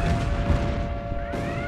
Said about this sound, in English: Boom. You hear the explosions.